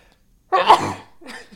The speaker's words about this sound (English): Bless you.